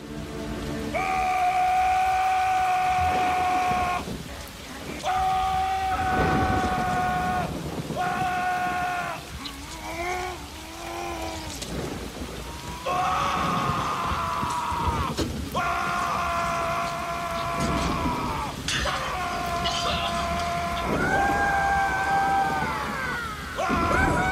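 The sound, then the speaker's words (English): Actor John Goodman screams over and over in a film scene as he comes out of the dirt, long, high-pitched, strained bursts, some held steady and some wavering, with short breaks between them over a constant hiss of background noise. “I just John Goodman screaming, coming out of the dirt covered in shit, is just so I'm just gonna play some of his screaming.”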